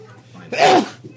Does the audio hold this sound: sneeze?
yes